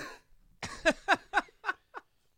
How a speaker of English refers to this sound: The juicy cough laughs that are going to happen this episode. Yeah. Lots of phlegm.